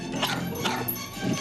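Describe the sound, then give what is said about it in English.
A person imitates a dog's whimpering with a few high, whiny, wavering yelps in quick succession, moderately loud, with no other voices or sounds. “This is the point where I have the note that I think the dog noises are made by a human.”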